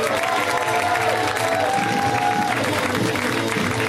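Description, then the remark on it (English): Loud, steady applause with scattered cheers from a comedy show audience as a comic from New York is introduced, a dense wash of clapping that holds at full strength for the whole few seconds, with a whistle-like tone briefly riding above it. “Please, ladies and gentlemen, let's hear it.”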